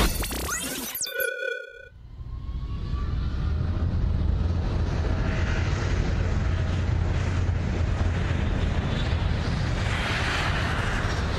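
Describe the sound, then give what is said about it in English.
A brief tonal chime gives way to a loud, steady engine roar with a deep droning hum inside an airplane cabin climbing for a skydive, continuing unbroken without any voices. “Our proud skydive edition. Wow, yes, we are officially on. We're ascending right now.”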